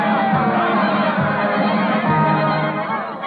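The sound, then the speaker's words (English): A large circus crowd cheers and shouts for a trained seal act in the ring, a dense, steady roar that fills the whole stretch without letting up, loud and enveloping, with no single voice standing out. “his painted grin grows broader as he listens to the cheers of the crowd.”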